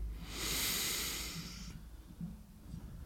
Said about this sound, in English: I don't know how the breaths come out on here and how well you hear me, but I'm just a heavy breather.